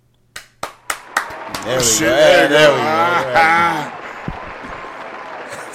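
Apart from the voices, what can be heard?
round of applause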